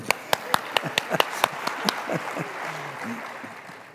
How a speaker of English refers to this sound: Ta-da! Round of applause.